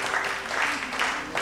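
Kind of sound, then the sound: crowd, audience clapping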